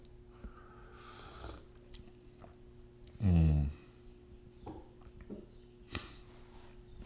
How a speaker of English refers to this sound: I'm going to take a little drink of coffee here before I talk about the decks I've been playing. Take a little sip.